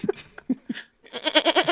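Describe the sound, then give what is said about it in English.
A man imitates a goat, starting with a few short choppy bleats, then a longer wavering, quavering bleat with a tremulous pulse. Fairly loud, with no other voices. “Dude, I'm a good goat guy, dude. That was good.”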